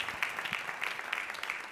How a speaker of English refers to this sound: Give the Lord a big, big hand clap as he comes.